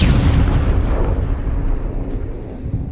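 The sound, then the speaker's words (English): A grenade explosion: one loud, harsh blast whose crackling high end fades quickly, leaving a heavy low rumble that rolls on for a few seconds. No voices. “The humanoid looks down, and the grenade flashes below frame, the white taking over the entirety.”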